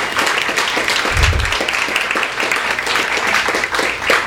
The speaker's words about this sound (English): We at Skylight Books are proud to be involved with this launch of this exciting new literary magazine, Slake. Woo! Yeah, that's a good time to clap. That's a really good time to clap.